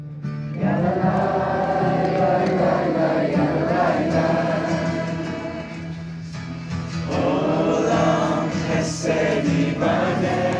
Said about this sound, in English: Like when campers were singing.